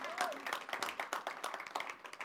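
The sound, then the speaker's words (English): An audience at a morning church service applauds in praise of the Lord with dense, steady clapping that keeps a fairly even loudness throughout, and a brief vocal cheer rises out of the crowd near the start. “Come on, let's give the Lord some praise in this place this morning.”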